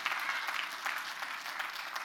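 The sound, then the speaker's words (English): An audience claps steadily, a dense wash of many hands beating together at a fairly even level throughout, with no voices heard over it. “You can clap.”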